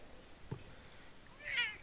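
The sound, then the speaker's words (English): A cat, female, lets out one short, complaining meow near the end, fairly clear, following a soft thump against a quiet background with no one speaking. “You wanna do a prank call, Kitty?”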